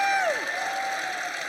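Steady audience applause with cheering mixed in for a speaker at a panel event, opening with a high whoop that slides downward, then a dense, even wash of clapping holding at a constant loudness.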